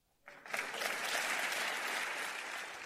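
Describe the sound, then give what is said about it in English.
Sustained applause from members of the Florida House in the chamber, rising quickly and holding as a steady, dense wash of clapping throughout, with no voices over it. “That applause coming from other members of the Florida House.”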